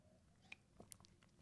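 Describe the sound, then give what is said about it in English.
Someone takes a quick sip of a drink: a few soft wet mouth clicks and a small swallow, quiet and brief, with no talking. “Let me take a sip real quick.”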